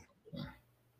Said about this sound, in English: Muting because of my dogs.